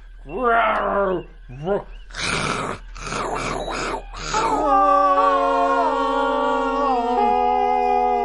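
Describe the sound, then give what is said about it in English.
A person vocally imitates a tiger with their mouth, a series of growling roars and snarls, loud, ending in a long drawn-out moaning growl that trails off. “Also, you have no tiger. You're making those sounds with your mouth.”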